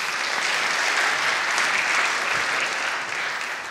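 A crowd applauds steadily, a dense wash of many hands clapping at once, sustained and fairly loud throughout before easing slightly near the end.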